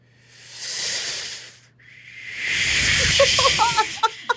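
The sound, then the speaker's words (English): A voice imitates wind whistling through a leaky window: two long, breathy hisses that swell and fade, the second louder and rougher, ending with a few squeaky, whistling tones. “Okay, wind through a leaky window.”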